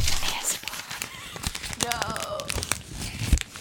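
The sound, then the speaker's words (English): Paper crinkles and rustles in irregular bursts of crisp, papery crackle throughout, with a short voiced sound rising briefly in the middle. “Oh, sorry for the sound of this paper. Crinkle.”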